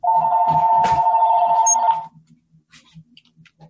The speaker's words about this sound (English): Hold on. But my phone's just starting to ring.